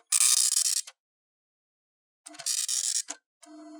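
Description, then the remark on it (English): Harsh, buzzing bursts of a slow serial-attached printer's head rasping across the page, two long passes separated by a pause, then a steadier whining mechanical tone at the end. Fairly loud, with no talking. “Tired of waiting on a slow serial-attached printer?”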